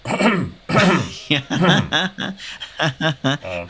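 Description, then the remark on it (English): Two loud coughs or throat-clearing bursts, a person deliberately imitating an awkward cough to wake someone up, followed by a stretch of short voiced syllables that sound like muttered speech or a nervous chuckle. “I cough to wake her up and like awkwardly.”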